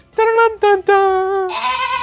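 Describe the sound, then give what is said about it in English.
Mountain goats bleat loudly, three short quavering calls in quick succession followed by a longer, raspier bleat that trails off. “The mountain goats are singing my praises.”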